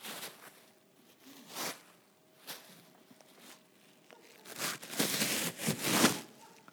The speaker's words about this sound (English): This, that's a plastic bag.